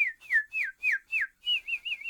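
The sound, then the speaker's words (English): A person whistles a quick series of bird-like chirps, about eight short descending and wavering notes in steady rhythm, clear with no talking. “Birds were chirping.”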